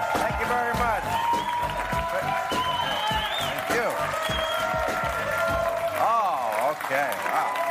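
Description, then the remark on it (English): The studio audience of the show Real Time, at the last show of the season, applauds steadily and loudly, dense clapping mixed with whoops and cheering voices that rise and fall throughout, without letting up. “How about that crowd?”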